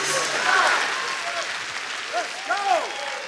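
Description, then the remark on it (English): A large crowd claps steadily for a few seconds, a dense applause with scattered cheers and shouted voices rising over it. “Clap your hands and tell your neighbor, shoot your shot.”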